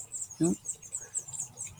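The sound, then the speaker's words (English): Thin, high-pitched chirps repeat rapidly and steadily as nestling chicks beg while a parent bird feeds them at a nest among adobe walls, with one brief low thump partway through and quiet outdoor background. “Parent bird is back feeding those chicks.”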